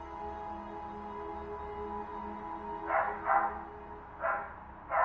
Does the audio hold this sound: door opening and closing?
no